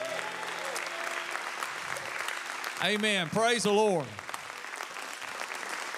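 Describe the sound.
A church audience applauds steadily throughout, giving one more round of applause to two guests, a dense wash of clapping from many hands, while a man's voice calls out briefly over it in the middle.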